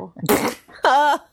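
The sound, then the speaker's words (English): A person blows a loud mouth-made fart noise: a breathy, raspy burst, a brief pause, then a longer buzzing, voiced raspberry that trails off. No talking around it. “You got the fart noise out of me.”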